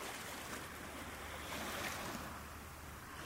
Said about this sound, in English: Of course, I love going to the ocean and I love the sound of the ocean, and it reminds me that I'm just one grain of sand on the beach, you know, in this world, in this universe.